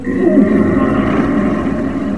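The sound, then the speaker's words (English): A voice imitates a strangled scream: one loud, sustained, raspy groan that holds steady for about two seconds, strained and choked rather than clear, with no words spoken. “And I was trying to, of course, scream or say something, and it came out as this.”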